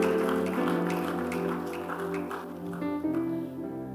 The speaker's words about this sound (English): Give the Lord a mighty clap offering.